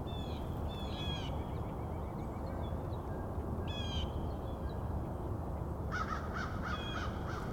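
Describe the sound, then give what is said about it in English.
A couple of crows flying this way caw in three short bursts of harsh, raspy calls, the last group a quick run of repeated caws, all over a steady rushing background noise. “A couple more crows headed this way.”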